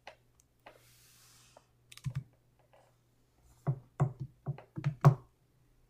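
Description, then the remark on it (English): Sharp keyboard keystrokes and mouse clicks tap out in an irregular burst, a few isolated clicks early on, then a quick cluster of typing near the end, with no one speaking. “Sorry about the clicking if you're listening in on the audio version.”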